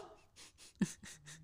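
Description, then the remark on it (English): A woman imitates a dog's barking at a dog, with a quick series of breathy, huffing barks, one sharper and louder than the rest, heard faintly with no other talk. “It's my sister barking at my dog.”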